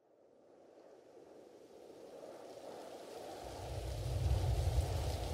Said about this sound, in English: Reverend Albert father of whispers, sang his song softly into the sounds of pattering rain.